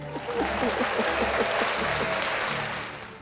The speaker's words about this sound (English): And the crowd goes wild.